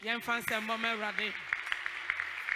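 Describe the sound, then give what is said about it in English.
A man's voice speaks briefly, then an audience claps for God in loose, scattered bursts, the sharp claps popping out over a low steady hum for the rest of the moment. “Clap for God.”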